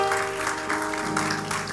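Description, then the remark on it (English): An audience at a morning church service claps hands to the Lord in a steady wash of applause, dense and continuous, with a sustained musical tone humming underneath. “Would you clap your hands to the Lord again this morning?”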